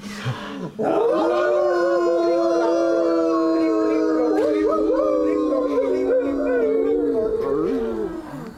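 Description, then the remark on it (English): Several human voices join in a long, sustained imitation of wolf howling, layered pitches wavering together for about seven seconds after a brief start, loud. “I'm a wolf. You can all join too on the count of three.”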